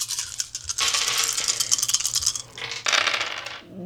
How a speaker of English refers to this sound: Roll our dice.